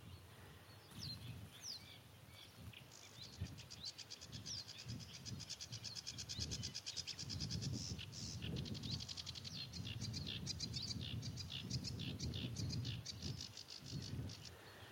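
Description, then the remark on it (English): A sedge warbler sings a fast, scratchy, varied song, layered over a steady background chorus of chattering reed warblers, with a low rumble of wind or traffic underneath. “You can hear a background chorus of reed warblers.”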